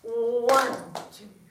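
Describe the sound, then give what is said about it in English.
One sharp hand clap cuts in right after a sustained, hummed tone, followed by a couple of softer, short knocks as the sound fades out. “We're just going to clap one time.”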